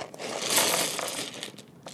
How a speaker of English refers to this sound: Oh, that was not a lot of dice. Just emptying my dice bag. Just emptying the dice bag.